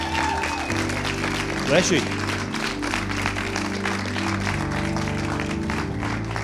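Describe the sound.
An audience applauds steadily throughout, a dense crackle of many hands clapping over sustained musical tones, while a voice briefly speaks over the noise.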